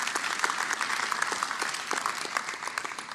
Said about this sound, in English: So let's give them a round of applause for an amazing story.